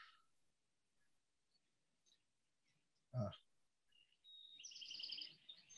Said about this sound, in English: Someone's got birds. Is that from my house or someone else's house?